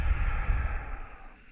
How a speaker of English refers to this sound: But just make sure that it is belly breathing, right? So we're breathing in through the nose and out through the mouth.